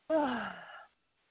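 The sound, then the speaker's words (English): A single drawn-out yawn, fairly loud, its voiced moan sliding downward in pitch for under a second before trailing off into silence. “Maybe, and I know we can't get into this, but maybe this has gone, like we've done it so that I'm yawning and it's releasing.”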